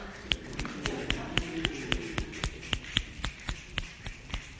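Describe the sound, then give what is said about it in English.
Fingers snap over and over in a steady, fairly quick rhythm as fingers are snapped 50 times on instruction, each snap a sharp, crisp click, with a faint background murmur and no clear speech. “Snap your fingers exactly 50 times or count backwards from 100 by 7, so 193 like that.”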